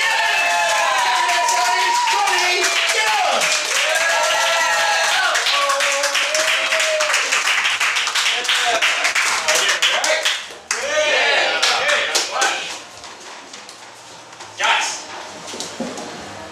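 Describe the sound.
An audience claps loudly and steadily on cue after a count of three, dense overlapping hand claps mixed with cheering voices, fading somewhat toward the end with a brief renewed burst.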